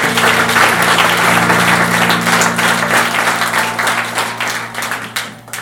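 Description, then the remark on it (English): A church audience claps steadily in dense, sustained applause, loud, with a low hum beneath it, tapering slightly toward the end. “A round of applause for the way.”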